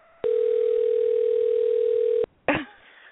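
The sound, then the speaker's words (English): A single steady telephone ringing tone sounds for about two seconds over a phone line as a call is placed, then cuts off and is followed by a brief clunk, like the call being picked up. “And let's hope that she answers the phone.”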